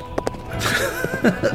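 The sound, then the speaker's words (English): Two quick hoof clops ring out as a gunslinger jumps on his horse and rides off, then give way to a sustained, wavering tonal sound that carries through the rest of the moment, with no one talking. “He picks up rifle, jumps on horse, rides off.”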